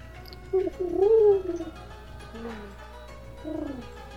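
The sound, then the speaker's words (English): A female owl calls twice, first a longer wavering, quavering hoot, then a shorter one a couple of seconds later. Both are clear over a quiet, low background hum. “This female owl comes and Solon's like, gets a little distracted.”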